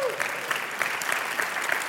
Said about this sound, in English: Man, you ought to give God a round of applause for that one.